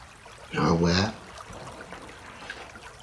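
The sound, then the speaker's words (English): A gentle stream trickles and burbles steadily throughout at a soft, even level, with a brief humming voice rising over the water near the start. “With each sound, the water moving downstream.”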